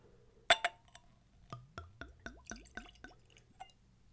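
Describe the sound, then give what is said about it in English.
A Glencairn glass clinks, then an absinthe-substitute liqueur glugs from a bottle into the glass in a quick series of rising, bubbly gurgles, fairly quiet, with no talking. “So let's go for a pour.”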